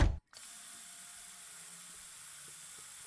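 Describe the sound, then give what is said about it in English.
A short thump, a brief pause, then tap water runs steadily into a bathroom sink to cool a burn, with a constant hiss and no voices. “Well, go in the bathroom and run the burn under some water.”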